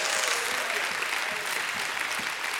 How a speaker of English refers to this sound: Somebody give him a hand clap and a shout of praise.